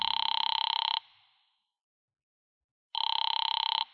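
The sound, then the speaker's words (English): A telephone rings twice on the line of a call made from a phone booth to a client, Fred Lane, a little after five; each burst a rapid, buzzy trill lasting about a second, separated by a long silent pause. The ringing is loud and clear, with no voices. “A little after five, I went to a phone booth and called my client, Fred Lane.”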